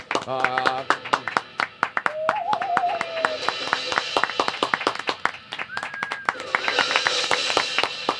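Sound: applause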